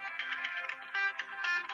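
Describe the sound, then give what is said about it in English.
A phone ringtone plays a bright, warbling electronic melody in quick repeating bursts, moderately loud, with no voices over it, signalling an incoming call. “That's your phone.”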